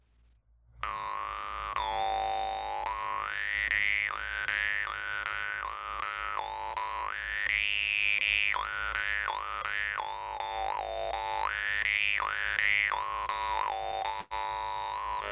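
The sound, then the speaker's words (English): A voice imitates a lark's song by singing through the nose, producing a continuous, warbling nasal tone that swoops and bends up and down in pitch, steady and fairly loud for about fourteen seconds. “And the third technique is the nozzle. It's I'm singing it through my nose.”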